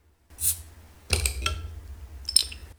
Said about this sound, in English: So I'm just going to open my beer. You might hear the bottle opening.